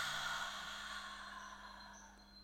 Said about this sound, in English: Let's take a deep breath in, breathing in all of that high vibration, and release.